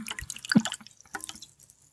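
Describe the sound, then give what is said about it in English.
A freshly opened lower-end Aldi brand ginger beer fizzing: a quiet, irregular crackle of popping bubbles with a few brighter drip-like pops, no voices over it. “You hear the fizz?”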